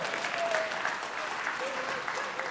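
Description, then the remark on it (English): A crowd claps steadily for a few seconds, a dense, even wash of many hands at moderate volume, with a few faint voices or whoops rising above the applause. “You can clap for that.”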